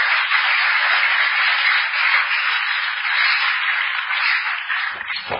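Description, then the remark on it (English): A church audience claps together in praise of the Lord in a steady, dense wash of applause that holds at an even loudness for several seconds before beginning to thin out at the end. “Put your hands together for the Lord. Oh, give the Lord a wonderful clap of him.”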